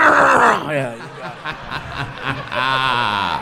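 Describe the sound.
A voice imitates loud snoring: a strained, nasal vocal burst, then rasping, sputtering breaths, and a second drawn-out, wavering groan near the end.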